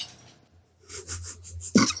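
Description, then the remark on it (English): A female dog scratches itself, its collar tags jingling in a quick run of about six soft metallic bursts that end in one louder clink. No one speaks. “Yeah, I don't know if I'm sure the mic picked it up, but the dog was scratching and her stupid collar was jingling.”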